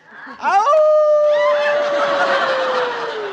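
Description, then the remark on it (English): A man lets out a loud imitation wolf call: a quick rising whoop that swoops up into a long, sustained howl, slowly sliding downward as it fades over a few seconds. “Yeah, you make me feel like giving my wolf call.”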